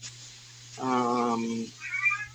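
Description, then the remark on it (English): A cat meows to be let in: one long, drawn-out low meow followed by a shorter, higher-pitched cry, with a faint steady hum underneath. “Hold on, I have to go let someone in. Oh well, at least cats don't bark.”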